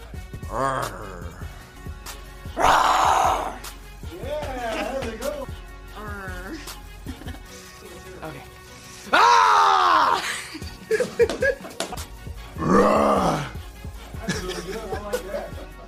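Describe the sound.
Loud human voices imitate a grizzly bear roar in several drawn-out, raspy bursts, with lower growling and groaning vocal sounds in between.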